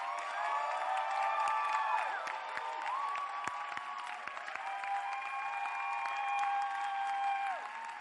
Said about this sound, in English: Stand to your feet and thank God. Oh, your clapping is so weak. I don't even know what it means.